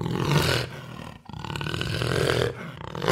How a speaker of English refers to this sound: Last clue. It has spotted fur. What is a Panthera onca? It's a jaguar.